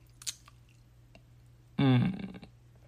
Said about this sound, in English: Let me get a little sip of this real quick.